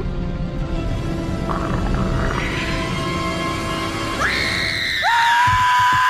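A growling monster roar rumbles low and loud throughout, then a child's high-pitched scream rises sharply over it, followed by another piercing, sustained shriek near the end.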